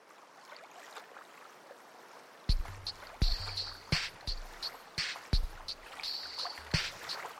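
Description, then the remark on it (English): Ambience on a relatively big, independently owned fishing boat on the water off the coast: a soft wash of waves, then irregular wooden knocks and low creaks with thumping bumps of the hull, steady, with no voices. “So we're going to be on a fishing boat. Okay. A relatively big fishing boat out off the coast of Cinnabar.”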